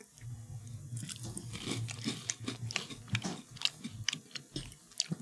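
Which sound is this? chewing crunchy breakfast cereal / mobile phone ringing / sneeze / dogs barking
chewing crunchy breakfast cereal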